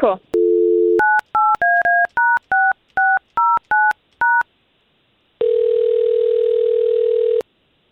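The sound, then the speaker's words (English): A man's phone number being dialed: a brief dial tone, then a quick run of about ten dual-pitched keypad beeps in an uneven rhythm, followed by a pause and a steady, loud ringing tone lasting a couple of seconds. “We're going to try to get him on the line and see if we can't find out what's going on with him, okay?”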